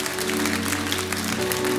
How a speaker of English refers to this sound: Come on, give me a hand clap. What an awesome thing.